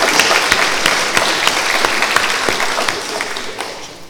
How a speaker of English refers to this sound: Now, I think they deserve a round of applause. A warm of hands up as well.